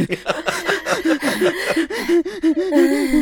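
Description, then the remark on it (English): A voice imitates heavy, rapid panting, a quick run of breathy gasps with a voiced edge, fairly loud, with no actual words spoken; a character panting while riding in the back of a basket. “only to look back and see Bernie, for reasons you don't understand, panting in the back of Carlton's basket, despite the fact that she is riding in the basket.”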